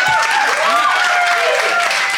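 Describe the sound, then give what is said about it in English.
Loud, dense audience applause for comedian Josie Long after she is awarded points, filling the whole couple of seconds, a steady wash of many hands clapping, with a few sliding, whistle-like tones drifting over it. “And applause for Josie.”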